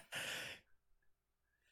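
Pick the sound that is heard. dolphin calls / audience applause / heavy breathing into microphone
heavy breathing into microphone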